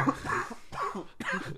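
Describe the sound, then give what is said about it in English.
Three harsh coughs in quick succession, each a short raspy burst with a brief pause between, fairly loud, with no talking around them. “Your stupidity's making me cough.”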